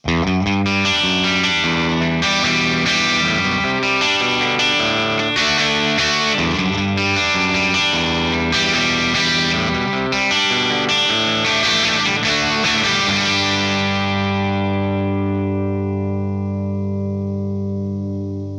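An electric guitar riff played through a Storm overdrive pedal into a Marshall SV20H amplifier: gritty, sustained chords in a steady rhythm, ending on one long ringing chord that slowly fades. No voices.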